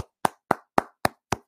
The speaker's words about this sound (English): So congratulations, Jeff Saturday. You definitely deserve the round of applause. So I'm going to go ahead and give that to you right now.